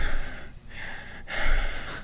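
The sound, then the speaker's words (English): A person imitates the heavy, raspy breathing of a monster in a video game: three loud, drawn-out breaths in a steady rhythm, each a harsh airy rush separated by brief pauses. “And it sounds like there's this heavy breathing, you know, it's just like...”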